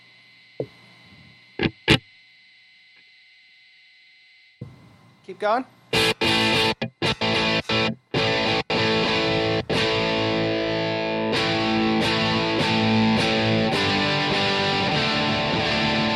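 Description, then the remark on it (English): Amp capture test tones during an auto set, with the input set to instrument: a steady high hum with a few sharp clicks, then a loud stutter of bursts giving way to dense, distorted buzzing tones. A voice speaks briefly over it. “we're going to go back to the beep bop boops”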